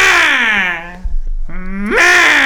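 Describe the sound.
A person vocally imitates a bird's tweet with a loud, drawn-out voiced call that slides down in pitch, dips into a brief low rumble, then swoops back up and holds.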